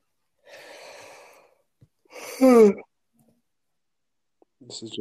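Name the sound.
heavy breathing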